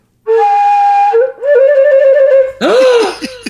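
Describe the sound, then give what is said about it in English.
A shrill whistle plays a long steady note, then a few wobbly lower notes, before breaking into a harsh, squawking overblown burst at the end. Loud, with no talking. “If he's that recorder? It's a whistle.”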